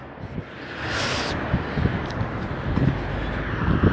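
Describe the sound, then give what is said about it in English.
Wind blowing hard outdoors in the cold, with the beach or ocean about 10-15 minutes away: a steady broad rush with low rumbling gusts buffeting the microphone, loud throughout, with no voices. “So it's really windy and cold over here.”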